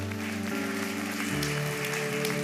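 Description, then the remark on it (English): An audience claps in a dense, steady wash of applause lasting a couple of seconds, with sustained keyboard chords humming underneath and shifting pitch midway. “We can clap for that.”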